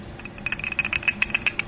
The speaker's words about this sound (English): Okay, so you've just poured it into the flask, and here goes some water. So we can tap off the biodiesel from the top.